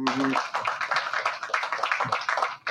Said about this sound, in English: Which, by the way, the clapping, I don't know if it's the Foley at the place, sounds like Monty Python clapping, like when, you know, when they would go to stock footage.